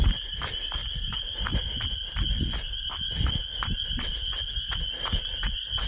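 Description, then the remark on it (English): A steady chorus of frogs chirps in the evening air at about 7 p.m. along Frog Lane on a trail loop, a continuous high trilling that never lets up, with regular crunching footsteps and no talking. “I don't know if the audio will pick it up, but the frogs are chirping this evening.”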